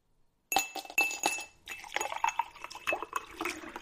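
Ice cubes clink and rattle against a glass of iced coffee being sipped, in a quick series of bright, sharp taps, mixed with soft liquid swishing, with no one speaking.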